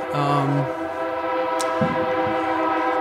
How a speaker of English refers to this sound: I'll just say right now that we're in Pacific, Missouri, and this is known as a train town. So we can hear the trains in the background here. Yeah, a little ambience.